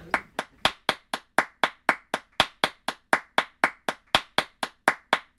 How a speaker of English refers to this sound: Is that hand clap or ass clap?